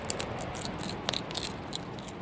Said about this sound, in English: He's just opened the hopper to get something out. Oh, he's got a pellet out. It's nice seeing them in the daytime when they're just relaxed and happy doing their own thing, chewing on a bit of food.